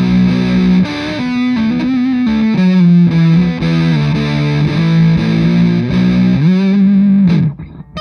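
An electric guitar played through a fuzz distortion pedal plays a thick, saturated riff of sustained low chords that shift in pitch in a steady pattern, loud and alone, ending abruptly with a short decay.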